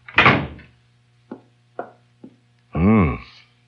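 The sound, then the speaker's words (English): An office door pushed shut by a secretary with a solid thud on a Monday evening, followed by three light clicks or taps and then a brief warbling squeak at the end. “No, but come in and close the door.”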